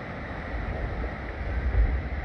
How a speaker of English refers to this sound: That's the hail.